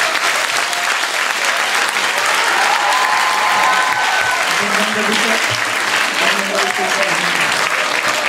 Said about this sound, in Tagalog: I-welcome po natin ang malakas na palakpak,